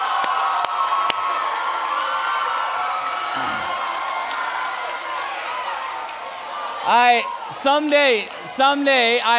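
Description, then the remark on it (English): A large crowd applauds and cheers for their leaders and youth pastors in a steady, noisy wash, then loud whoops and high-pitched shouts rise over it near the end. “So could you just give a round of applause for your leaders and your youth pastors?”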